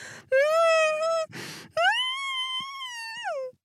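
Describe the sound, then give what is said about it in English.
A voice imitates a muffled, closed-mouth shriek: two long, high, strained hums, loud, separated by one sharp noisy breath drawn through the nose, ending with a brief upward squeal. “Britt shrieked with her mouth shut. Did she still have a mouth? Panting through her nose”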